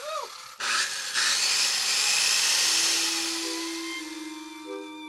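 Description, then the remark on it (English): A power tool used to rip books apart in a Book Mutilation Therapy session drills, starting with a short rising whir before settling into a loud, steady grinding whine that continues for several seconds. “We have a session called Book Mutilation Therapy, and then I bring in all my power tools.”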